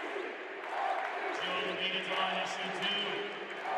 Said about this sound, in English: Crowd chanting MVP with a little extra appropriate vigor.